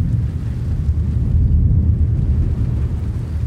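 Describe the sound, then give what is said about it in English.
A deep, sustained rumble of thunder from an evening thunderstorm near the foothills of the Manzano Mountains in central New Mexico rolls continuously, loud and heavy in the low end, filling the whole stretch without any break or voices. “Before we go, we get drenched by an evening thunderstorm.”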